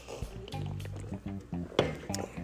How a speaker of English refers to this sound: Excuse me, I had to get a swig of my Rockstar.